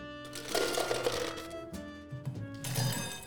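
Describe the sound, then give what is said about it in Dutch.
A generous amount of ice cubes dropped into a glass while making the Belfius mocktail, clattering and rattling in several irregular bursts over a few seconds, fairly loud, with a steady tonal hum running underneath and no talking. “Wat ik nu ga doen is in het glas flink wat ijsblokjes toevoegen.”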